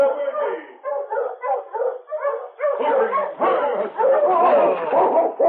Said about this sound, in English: As Virgie was loading the supplies on his sled, he heard another team of Huskies approaching along the main street of town.